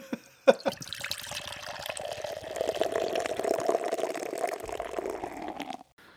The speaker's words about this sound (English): All right, so we have our first beer poured out. God. Damn it. We have our first beer poured out, and we're going to lean in for some smelling notes.